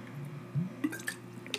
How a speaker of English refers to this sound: I need to have a sip of my lemon water.